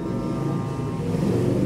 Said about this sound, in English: There goes the motorcycle.